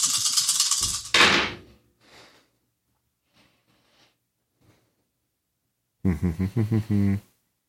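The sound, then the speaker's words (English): Dice rolled in a tabletop roleplaying game rattle in a loud, noisy burst of shaking, then a few faint scattered clicks as they settle, showing two ones and two twos. Near the end comes a short, pulsing voiced sound. “I got two ones. All right. And two twos. And then I got to roll again.”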